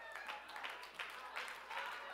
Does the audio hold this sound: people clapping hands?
yes